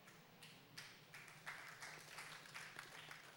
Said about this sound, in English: Don't clap. Don't clap. Because you're doing that for Jesus. Not for me.